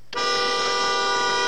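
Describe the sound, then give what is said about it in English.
A detained driver's car horn blares at a checkpoint 40 miles from the Mexico border on a secondary road: one long, steady honk, starting abruptly and holding loud for over a second with no other sounds. “That's Terry honking his horn.”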